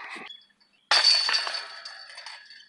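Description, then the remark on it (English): A disc golf disc strikes basket chains outdoors on a hot, steamy day: a sudden bright metallic crash, followed by a shimmering, jingling rattle that slowly fades over a couple of seconds. “Bang the chains, yeah!”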